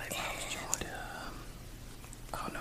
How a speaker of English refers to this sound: I think that was the watermelon gum. I believe that's what I was chewing that day. Cause I know I used to buy packs of that for a good little while.